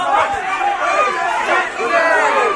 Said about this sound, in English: You know what? I don't know if the yelling is working. No. I can't actually hear.